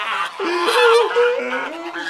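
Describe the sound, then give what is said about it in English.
A duck honks in a loud, nasal, drawn-out call, its pitch stepping up and down over about two seconds. It stands alone with no talking. “I just hope the duck is okay, poor thing.”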